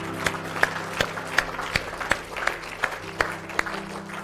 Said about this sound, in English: Clap of praise this morning.